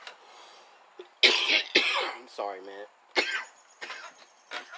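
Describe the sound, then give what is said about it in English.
Several harsh, forceful coughs and throat-clearing bursts come in quick succession, loud, with a man briefly speaking an apology between them. “I really apologize for all of this coughing.”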